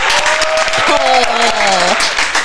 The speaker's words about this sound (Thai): วันนี้เสียงปรบมือ8เดซิเบลขึ้นไปนะคะ